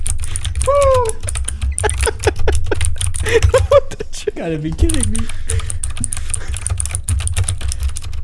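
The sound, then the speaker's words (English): Rapid keyboard typing, picked up by a microphone aimed at the keyboard, clatters steadily throughout, a dense run of sharp clicks, while a man's voice briefly speaks over it and a low hum sits underneath. “He's got his mic aimed at his keyboard.”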